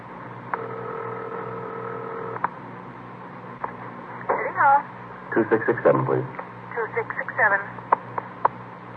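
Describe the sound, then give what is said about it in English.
A telephone in a hall is dialed: a steady tone sounds for a couple of seconds, then scattered clicks follow while a muffled voice talks faintly in the background. “I wonder if I can use your phone.”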